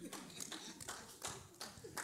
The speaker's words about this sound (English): Oh, only one person was clapping.